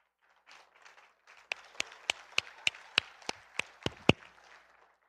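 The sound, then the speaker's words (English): A group claps along: soft scattered patter first, then about a dozen sharp, loud claps in a steady, even rhythm, each crisp and bright, with no voices. “You can have a, you've got a hand clap.”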